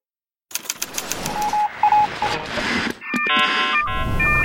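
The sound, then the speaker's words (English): A car alarm going off outside: after a patter of sharp clicks and short beeps, a loud electronic wail cycles through steady, buzzy tones that jump between pitches, with no voices. “Are you hearing that car alarm that's going off somewhere outside?”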